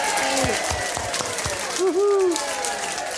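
A crowd claps and cheers in a steady wash of applause, with a rising and falling whoop or whistle cutting through partway.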